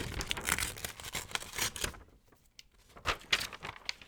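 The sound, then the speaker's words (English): Quiet crinkling and crumpling of a square of thin toilet paper, with a brief tearing rip, soft rustles continuing in short bursts after a pause; the square is being added to water to dissolve. “You're gonna add in 1 square of toilet paper and just let that dissolve in the water.”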